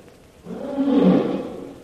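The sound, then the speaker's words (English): A large tiger, shot and hit but not killed, lets out a single deep, rumbling roar that swells from nothing, peaks loud, then fades over about a second and a half, with no voices. “Tiger not killed.”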